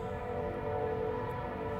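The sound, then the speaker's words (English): A freight train rolls by on a single-track freight line that runs in and out of Philadelphia, with a steady, unbroken low rumble and a droning metallic hum layered over it, holding an even loudness throughout with no voices. “That is the freight line off to my right. That's a single track that goes in and out of Philadelphia.”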